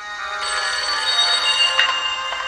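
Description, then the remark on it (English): A telephone rings steadily, its bright, high-pitched electronic trill sustained throughout with a few sharper chirps near the end, a call placed from a payphone. No one speaks. “Dayton's invisible again, and he calls Lou from a payphone and does some heavy breathing, and I don't know what the point of that was.”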